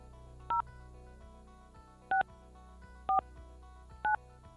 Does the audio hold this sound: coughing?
no